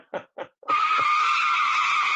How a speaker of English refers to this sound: You heard them brakes screeching? No. I heard them.